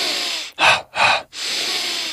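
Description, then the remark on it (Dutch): Airy breathing with no talking: a steady breath, two quick forceful breaths in a row, then a long drawn-out breath, as in a deliberate breathing exercise, demonstrating the same breathing pattern done in reverse. “Dus het is precies dezelfde ademhaling, maar je draait hem gewoon om.”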